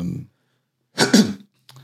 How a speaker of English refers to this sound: just coughed. Yeah, it's all good.